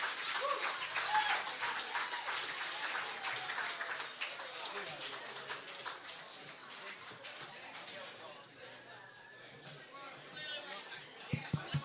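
Sustained audience applause for a band at the 30A Songwriters Festival, a dense wash of many hands clapping at fairly even loudness with crowd chatter mixed in, ending with a few sharper, isolated claps.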